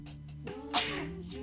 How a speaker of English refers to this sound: No, that was just me sneezing.